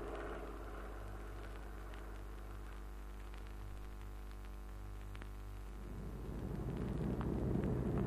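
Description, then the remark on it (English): A propeller aircraft drones with a steady, low, humming engine tone that swells louder and rougher over the last couple of seconds as it approaches overhead. No voices are heard. “Pat, there's a kite coming. Isn't that the mosquito?”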